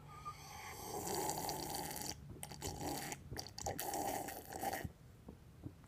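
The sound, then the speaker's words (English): Someone gulps and slurps water loudly and messily for about four seconds, the wet gurgling broken by a few short pauses for breath, with no talking. “By the way, my name's Donald Trump, and I drink water like this.”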